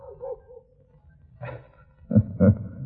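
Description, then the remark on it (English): A dog in light underbrush at night whines faintly, then gives a few short, gruff woofs, the last two louder and close together, with no talking. “It was a dog.”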